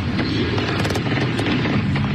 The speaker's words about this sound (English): Gunfire. Screams. As a horrifying reality set fans, including families, running for their lives.